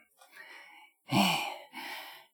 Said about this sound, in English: If I start breathing really heavily, I can get into the voice.